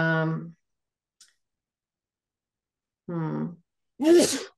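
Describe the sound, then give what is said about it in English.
A single sharp sneeze bursts out at the end, loud and breathy, after two brief voiced murmurs separated by quiet. “Bless you.”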